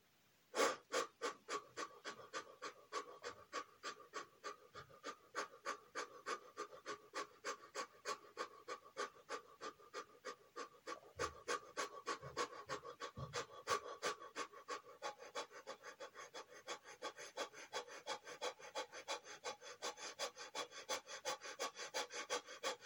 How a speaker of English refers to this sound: So we can begin with a few of those quick breaths, breathing in and out quickly. Then we'll move on to a series of other breaths. Quick breaths.